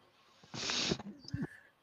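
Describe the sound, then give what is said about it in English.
A single loud, breathy sneeze, a sharp hissing burst of air lasting under half a second, followed by a few short, faint vocal sounds. “Bless you, sir.”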